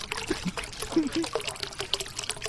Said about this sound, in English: From rocks into water to spraying dishes, there are plenty of water sound effects for your projects.